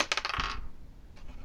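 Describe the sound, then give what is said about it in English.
Dice are rolled for a persuasion check, coming up a 3. They clatter across a hard surface in a quick burst of bright, rattling clicks lasting about half a second, followed by one faint tick as they settle. No one speaks. “I rolled a 3.”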